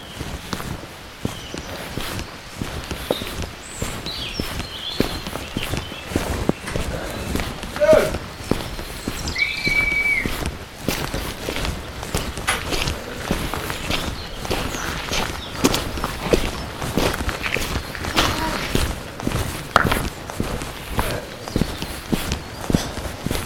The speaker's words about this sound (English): But yeah, just walking through the woods, I'm surrounded by little birds.